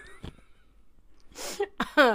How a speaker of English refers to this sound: Get all your coughs out.